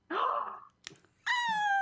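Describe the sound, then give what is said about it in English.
A cat meows twice, a drawn-out cry followed after a brief pause by a second, steadier meow, with a short soft rustle between them and no talking. “Idol Champions brings all the cats out.”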